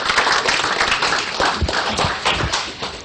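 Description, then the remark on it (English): Sustained audience applause for the participating players at a talk about the Bloodhound car fills the whole stretch, a dense, steady wash of many hands clapping at once, loud, with no voices standing out above it. “Let's give all our players a round of applause.”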